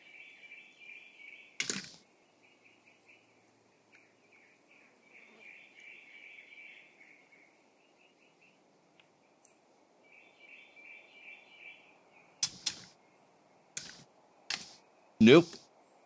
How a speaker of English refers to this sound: Nope. I don't think it's going to matter at all. So, I just leave it and deal with the cicada sound. Like we all have to do.